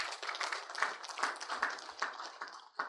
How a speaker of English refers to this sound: A round of applause.